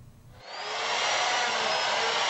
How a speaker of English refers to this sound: Pieces of pineapple are added to a blender with water, and in no time at all, they're mixed into a liquid.